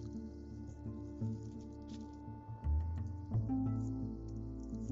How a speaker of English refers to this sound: If we go to Matthew 24. I know you can hear the pages turning here. Let me get there.